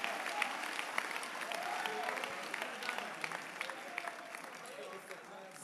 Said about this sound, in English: I clap your hands for Jesus.